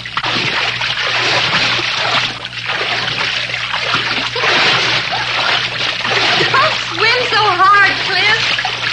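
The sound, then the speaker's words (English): Someone thrashes and splashes through water while swimming once around a pool, a loud, continuous churning of sloshes and splatters that never lets up, with a brief voice sounding near the end. “Fighting an octopus, not swimming.”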